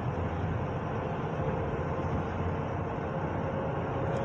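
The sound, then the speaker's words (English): A steady, unbroken rumble of road traffic fills the scene, with heavy low-end engine and tire noise holding at an even level and no distinct individual vehicles standing out. “What's going on here with all this traffic here?”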